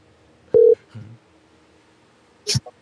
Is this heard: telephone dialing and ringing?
yes